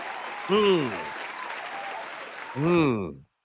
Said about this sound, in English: Let's give my man Yusuf a round of applause. Oh, a successful giveaway here on Nothing But Niners.